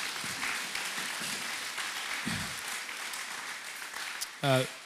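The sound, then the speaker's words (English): An audience claps together in a steady, dense wash of applause that lasts throughout, with a few voices calling out and a short spoken exclamation rising near the end. “And everyone said, amen. Amen. Yeah, clap on.”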